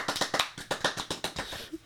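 Quick, steady clapping, around a dozen sharp claps in under two seconds at a brisk even rhythm, moderately loud, with no one speaking.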